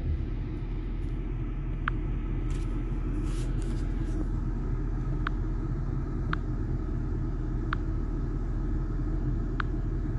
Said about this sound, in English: Sorry, folks, quick break. Trying to do a little maneuvering with traffic here. My apologies.